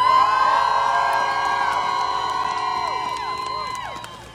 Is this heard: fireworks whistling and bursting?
no